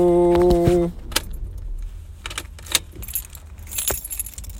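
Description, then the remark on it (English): A car's emergency brake is set with a few sharp, metallic ratcheting clicks spaced over several seconds, following a brief steady electronic tone, inside a quiet car just pulled into a driveway and put in park. “Putting the car in park. Putting on the emergency brake.”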